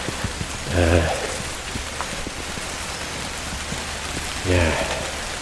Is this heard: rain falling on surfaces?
yes